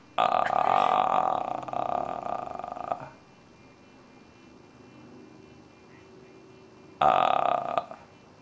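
A telephone rings in two loud bursts, a long buzzing ring for about three seconds, then a pause before a shorter second ring starts, with a dim background hum in between.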